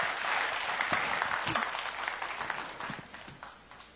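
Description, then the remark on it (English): An audience claps their hands to God in thanks, a dense, sustained wash of applause that gradually fades, with a few faint voices mixed in underneath. “Let's clap our hands to God and just thank Him.”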